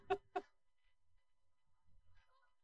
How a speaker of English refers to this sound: It's not motorcycles, it's geese.